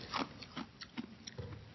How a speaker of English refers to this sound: I have ice in my Coke. So I get to chew the ice, and that probably will show up on the CD and stuff, huh? That's cool. I kind of hope it does.